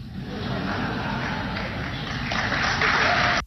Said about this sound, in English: Do you hear the crowd? They were not sure to begin with how to react to that one because they got it. And so here you had a hesitation in clapping.